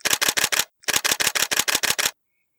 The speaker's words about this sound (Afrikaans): Die kameraklanke skiet uit en klink soos die masjiengewere se vinnige vuur destyds toe dit burgeroorlog was in die bosse om haar dorp.